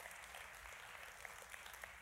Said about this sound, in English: You just clapped like you were at a golf match.